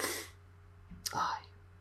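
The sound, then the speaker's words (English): A single quick sneeze bursts out after a soft breathy hiss, a sharp explosive onset trailing into a brief airy tail, not very loud. “Bless you”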